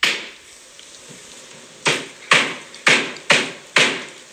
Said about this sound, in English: Here's a clip of like the construction noise from before they moved in.